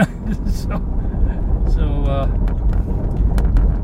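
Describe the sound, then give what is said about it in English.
A steady, heavy low rumble of road and engine noise fills the inside of a car driving home throughout, with a brief muffled voice-like tone rising over it midway. “I'm on my way home in the car”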